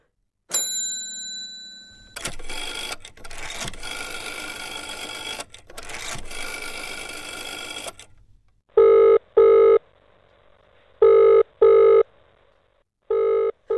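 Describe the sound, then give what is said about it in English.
A telephone rings in loud double bursts, three rings spaced a couple of seconds apart, following a few seconds of steady mechanical whirring and clatter. “That's why they've been ringing.”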